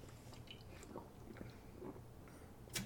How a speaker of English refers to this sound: Lose my voice here. Can we take a sip of my 805 here?